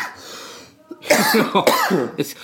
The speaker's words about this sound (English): it's contagious. Jesus. The boys are coughing. We're not even smoking.